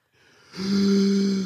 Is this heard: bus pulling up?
no